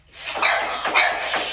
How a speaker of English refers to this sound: That's why my dog's sitting here barking.